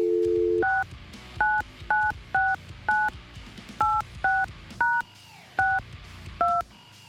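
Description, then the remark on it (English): A brief steady dial tone gives way to a quick series of about ten touch-tone keypad beeps, each short and clear, with small pauses between presses and no voices, as a cell phone number is dialed to reach Jason Mewes. “I do have backup numbers to call him, I guess.”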